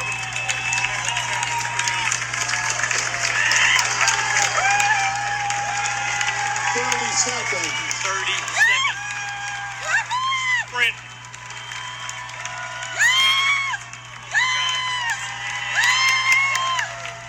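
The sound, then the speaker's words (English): A large crowd at a race finish cheers steadily as a runner rounds the curve, a dense wash of voices broken by loud, rising whoops and shrill shouts that swell in bursts toward the end. “Listen to this crowd.”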